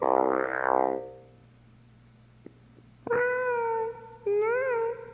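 A cat meows three times: a loud wavering meow, a quiet pause with a faint click, then two long drawn-out meows in quick succession. No one talks.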